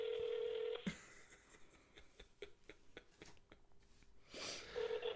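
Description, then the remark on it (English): A steady dial tone cuts off, followed by a quick series of touch-tone beeps as a number is dialed, then another tone returns near the end, all heard through a phone speaker. “Making a call. Who? To whom? None of your business. Is it on speaker? It's on speaker.”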